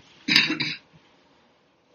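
A raspy throat clearing from a person with a scratchy throat that breaks into a short double cough, about half a second long, followed by quiet and a faint click at the very end.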